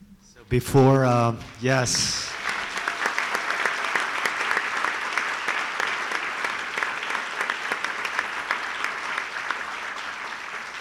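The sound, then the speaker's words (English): A large audience breaks into sustained applause, a dense steady wash of many hands clapping that continues for several seconds, preceded by a brief spoken phrase at the start. “I was going to ask you to clap, but you just did it, so you just stole my thunder.”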